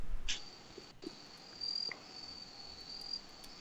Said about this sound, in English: I hear crickets. I don't know. Oh. I literally hear crickets right now.